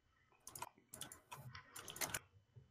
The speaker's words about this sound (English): We just hear like he's aggressive typing.